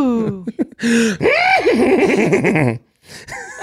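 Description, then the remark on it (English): A person's voice imitates a horse's neigh: a loud whinny with a quavering, wobbling pitch that rises and falls for a couple of seconds after a few short breathy bursts. “That wasn't a sound effect. If you're listening at home, that was …'s actual. That was I don't my know horse how now?”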